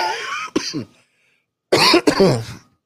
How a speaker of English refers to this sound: I got this cough. Since I started working out, I got this relentless cough for whatever reason. I guess every pound I lose, I get sicker or something. Because this cough is like, you know what? I'm not going nowhere.